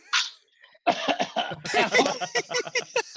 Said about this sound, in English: Oh, …. Oh, he's coughing. That's not good.